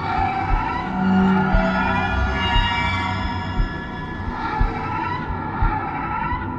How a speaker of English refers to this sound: The closest sound I can compare it to is the sound of metal on metal, two cars slamming into one another. Covering my ears, I felt the sound resonating in my head, filling my heart with dread.